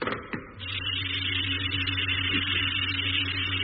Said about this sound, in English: All right. Close the hatch and exhaust the airlock. Hatch closing.